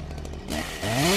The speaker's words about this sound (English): A chainsaw! A classic choice.